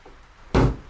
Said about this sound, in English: Six knocks. Well? The old station master said there were six people killed.